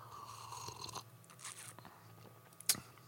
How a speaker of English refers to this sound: My mouth is hot. It's producing quite a bit of saliva. You can probably hear how I have to keep stopping and swallowing, having sips of beer and so on and so forth.